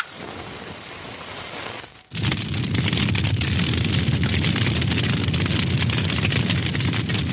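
A whoosh of ignition gives way to a loud, steady roar of a dumpster fire, with dense crackling texture sustained for several seconds and no voices.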